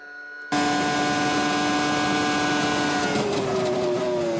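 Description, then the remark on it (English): An F1 car engine bursts in at full speed heading almost flat out into turn one, a loud, steady high-revving scream that dips slightly in pitch late on, with a few brief harsh scrapes of the car bottoming out. “I mean, did you hear the car bottoming there?”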